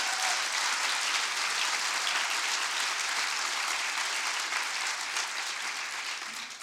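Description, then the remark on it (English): An audience in Adelaide, Australia, applauds after an acknowledgement of country, a dense, even patter of many hands clapping at a constant level throughout, easing off slightly at the very end with no voices over it. “All right, well, folks, the thing that I delayed clapping there, thanks, guys, yeah.”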